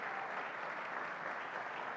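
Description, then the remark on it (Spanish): An audience at a Resurrection celebration service at Vida Abundante applauds Christ in a steady, dense wash of many hands clapping, sustained evenly for the full two seconds with no voices standing out. “Denle un aplauso a Cristo en esta mañana.”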